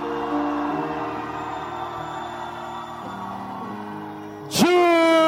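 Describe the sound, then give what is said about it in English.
A group of people shouts together loudly and steadily for several seconds, then the crowd erupts into a sharper, louder rising yell near the end; the crowd is split into groups by month, each shouting in turn. “Okay, I'm trying to find out which group is shouting the loudest, but July.”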